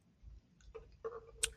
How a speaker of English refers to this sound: I got my tea. Ooh, sipping my tea.